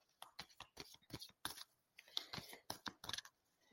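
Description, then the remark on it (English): A deck of tarot cards being shuffled during a card reading: quick bursts of crisp, papery slaps and flicks, irregular but steady, fairly quiet, with no voices. “I'm feeling, you know, I naturally went to shuffle again, so I'm going to allow that.”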